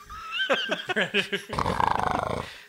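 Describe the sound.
A person imitates a predator's growl: a few rough, throaty bursts give way to a rapid, rattling clicking growl that stutters on for about a second before cutting off.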